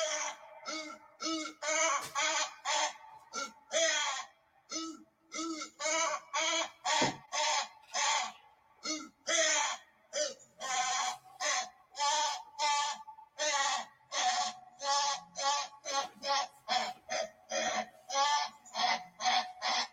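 A reconstructed Dryptosaurus dinosaur vocalization: a long, rapid series of short, harmonic honks with a bleating, laugh-like quality. It repeats steadily and loudly with brief gaps and no voices.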